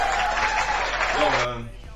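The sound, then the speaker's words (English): A gunshots and cheering sound effect: a burst of crowd cheering and applause, loud and dense for about a second and a half, then cut off as a few low tones briefly ring out underneath. “Gunshots and a cheer.”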